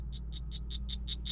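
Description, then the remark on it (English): A female poison frog named Lenny calls in a quick, evenly spaced run of about seven high, buzzy chirps that grow slightly louder, over a low steady hum. “Isn't that the poison frog?”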